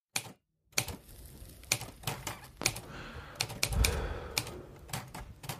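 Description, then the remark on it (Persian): Irregular mechanical clacks of typewriter keys, sharp, struck in uneven bursts with brief pauses, over a low background murmur and no voices; a man typing in bed on a remote island in December 1948, trying to finish the book 1984. “دسامبر 1948، مرد در تخت خواب در جزیره دور افتاده پشت ماشین تایپ شیشته و تلاش میکنه کتاب را به پایان برسانه که از هر چیز دیگه برش مهمتر است.”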